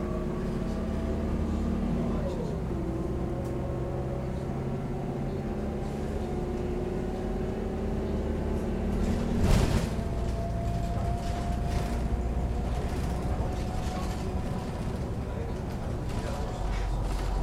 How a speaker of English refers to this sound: On a bus.